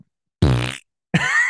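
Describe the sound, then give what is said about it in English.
A person imitates a male deer buck's grunt call, used to try to stop two does running across a ridge line: two loud, low guttural bursts, the first longer and buzzier, then a brief pause and a second rougher grunt. “So we had a male buck grunting call, and these two does are running across this ridge line, and he, like, it sounds like this.”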